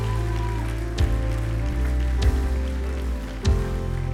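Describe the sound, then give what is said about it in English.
An audience claps and applauds in praise of God in a steady, dense wash of sound, with sustained organ-like tones humming underneath and a few louder thumps breaking through. “Come on, if you believe in today, put your hands together. Give God a big praise.”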